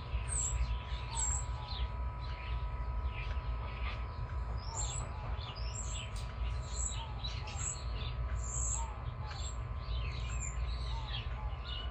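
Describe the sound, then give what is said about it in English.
Many small birds chirp and tweet repeatedly outdoors, a steady layer of high calls over a constant low rumble of background noise, with no talking. “There's a couple of doves that are in front of me, and they were just loving on each other, cooing neck to neck.”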